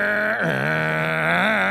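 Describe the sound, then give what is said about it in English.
A voice imitates a neighbor's running chainsaw with a loud, continuous buzzing drone that dips in pitch briefly, like the engine bogging, then holds steady and rises slightly again. “chainsaw. Is that how it sounds?”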